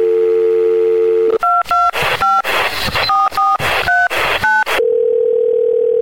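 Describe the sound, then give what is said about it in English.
A steady telephone dial tone hums, then a quick run of about seven or eight keypad beeps with rough noise between them, before a steady tone returns at the end, calling the Movie Zone phone line of the Larry H. Miller Megaplex Theaters. No one speaks. “But in the meantime, one final movie to make a stop here on the Movie Zone phone this week.”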